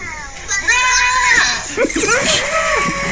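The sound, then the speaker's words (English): Loud, bass-boosted goat screams: shrill, wavering bleat-like wails rising and falling in pitch, with a heavy, distorted low end running underneath for a few seconds. “Bass boost. Is that the screaming goats?”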